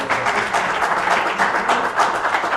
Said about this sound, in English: Would you give a round of applause for standing up? Thank you.